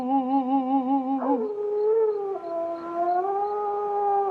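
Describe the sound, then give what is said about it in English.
A dog howls in one long, sustained cry, fairly loud, wavering at first, then sliding down in pitch and holding a steady, mournful tone for several seconds. “I think the dog is better.”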